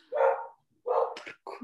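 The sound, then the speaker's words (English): Several rescue dogs bark in a quick run of about three or four sharp, fairly loud barks, the first drawn out and the rest clipped and bunched together, with no one talking. “We'll have dogs barking in the background.”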